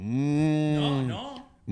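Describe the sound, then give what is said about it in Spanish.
A long, drawn-out moo made by a human voice, loud, holding steady before sliding down and fading, followed by a brief start of another vocal sound. “Si a usted le gusta ver vacas en vivo...”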